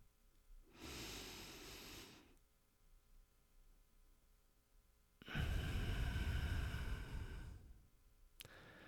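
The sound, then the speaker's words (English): Slow, deliberate breaths in a triangle breathing exercise: a long inhale, a pause, then a longer, heavier exhale, with the start of another breath at the end. “So we're going to do triangle breathing.”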